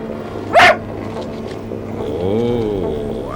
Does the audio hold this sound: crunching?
no